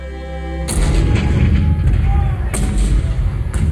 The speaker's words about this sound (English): April 12, 1861, Fort Sumter. The cannons spoke for war.